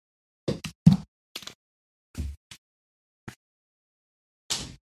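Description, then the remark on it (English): A dog barges in through a door left cracked open, making a scattered series of soft thumps and bumps, with brief quiet gaps between them and no talking. “Apparently I left the door cracked and one of my dogs just barged in.”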